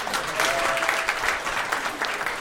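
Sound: audience round of applause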